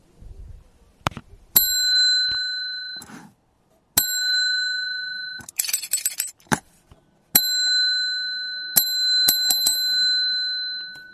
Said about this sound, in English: I don't have time sitting here ringing the bells to you.